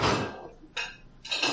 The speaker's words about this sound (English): Just go ahead and put them on that table, and you can go ahead and put the plate in the dishwasher.